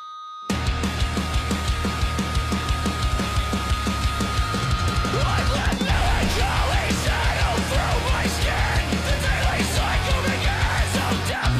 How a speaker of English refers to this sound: I love it already. I fucking love this. I love the fucking melodic hardcore scream. It's just, I used to hate it, but I feel like it's more, I don't know.